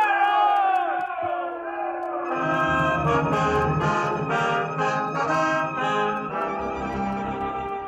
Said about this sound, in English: Like heroes we was riding that day into Abilene. People cheering and yelling. And us the mangiest, dirtiest bunch of cowpokes that ever come into town.